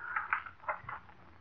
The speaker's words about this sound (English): Oh, ridiculous. Pages turning. Pages of my ledger turning.